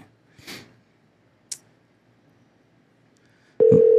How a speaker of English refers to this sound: We had a missed call here, and I apologize to the caller. Let's see if I can call them back here. I apologize. So we're calling them back.